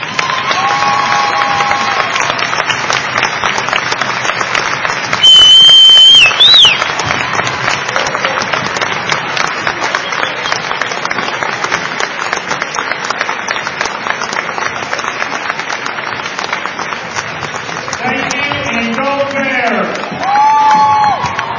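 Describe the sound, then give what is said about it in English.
A crowd applauds the 2016 runner-up baseball team steadily for about twenty seconds, dense clapping mixed with cheers and a few high-pitched whoops and whistles rising above the noise. “Please give a round of applause for the 2016 runner-up baseball team.”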